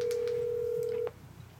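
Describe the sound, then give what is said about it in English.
A single steady telephone tone sounds clearly for about a second as a phone call is being placed, then cuts off abruptly, leaving only faint background hiss. “So I'm going to make a quick phone call here.”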